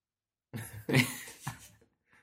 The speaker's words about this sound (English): Every single time I hear the intro music, I suddenly need to cough. I've conditioned you. Yeah, every time.